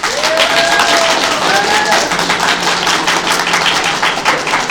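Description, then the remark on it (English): An audience applauds steadily to vote for Doctor Strange in a debate, a dense crackle of many hands clapping at once, with a few rising whistles and cheering voices mixed in near the start. “So, audience, it's time to vote.”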